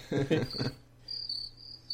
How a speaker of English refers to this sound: We had the crickets.